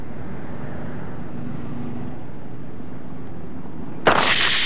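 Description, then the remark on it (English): A bicycle brake testing rig, operated by technicians checking the brakes on a bike, runs with a steady low mechanical drone and faint hum for several seconds, then a sudden loud, harsh burst of noise erupts near the end. No one speaks. “The commission employs highly trained technicians to carry out tests like this, checking the brakes on a bike.”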